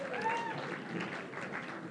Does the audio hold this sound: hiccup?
no